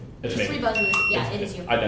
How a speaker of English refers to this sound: Three buzzers.